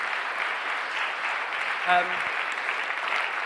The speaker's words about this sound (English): Let's give these guys a big round of applause for helping us think about that.